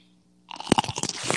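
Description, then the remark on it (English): A wet crunch as teeth bite into a succulent 5-inch pickle for ASMR, followed by a burst of juicy, crackling chewing noises after a brief quiet start. “We're going to go in for the first crunch.”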